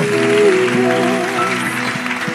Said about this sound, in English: Now, thank you, thank you. Can you clap to the Lord, if you want to?